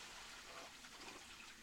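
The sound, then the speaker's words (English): A steady, soft rush of water running through a building's plumbing pipes, a continuous trickling hiss with no pauses and no voices, heard at low volume. “People go to the bathroom here, and these pipes have the water.”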